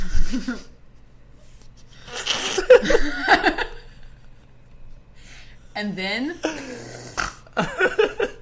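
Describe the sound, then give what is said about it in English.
A voice imitates snoring with a few rough, drawn-out snorts, broken up by short chuckles and a brief vocal sweep between them. “And then snoring.”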